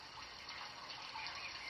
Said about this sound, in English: What do you hear? I hear the water. Water.